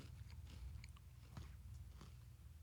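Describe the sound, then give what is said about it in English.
Crunching and snapping of crispy food as two people snap pieces at the same time, with several sharp crackly bites spread across a couple of seconds over a low steady hum, no talking. “We can do a little ASMR crunch. Let's do it. Should we both like snap them at the same time?”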